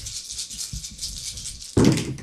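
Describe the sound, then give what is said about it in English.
A brief run of light clicks and rattles as ten dice tumble in a roll for an attack, over a steady hiss, ending in a louder clattering burst near the end. No one speaks. “Out of 10 dice, I once again rolled 4.”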